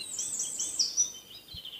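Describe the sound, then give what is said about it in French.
Birds sing in bright, high chirps and trilling phrases, fairly soft, with overlapping calls running continuously over a faint background hush. “Vous entendez les oiseaux ?”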